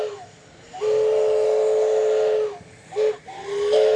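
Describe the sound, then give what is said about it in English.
A steam train whistle sounds in a long sustained blast, then two shorter toots, over a steady background hiss of escaping steam, from a steam train attraction at the Best of the West event at Santa Margarita Ranch; loud, with no talking. “And as you can see, they also have a steam train attraction out here.”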